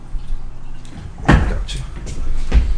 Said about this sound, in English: There's some heavy Teamsters sitting on these chairs. I can hear them creaking.